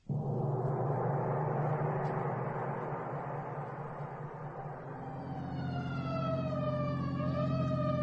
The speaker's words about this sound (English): Hey, where are you turning? The alarm said Pine Street, didn't it? Oh, yes, yes, of course. So why the siren? The only traffic out here is on horseback.